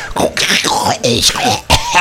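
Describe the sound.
A voice imitates a radio being tuned in to cue the news, with warbling, sliding whistles broken by harsh, throaty bursts of static-like noise. It runs continuously for about two seconds, fairly loud.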